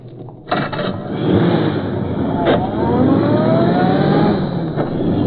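A car engine roars to life and revs hard, rising in pitch as it accelerates and speeds off with a kidnapped man inside, loud throughout.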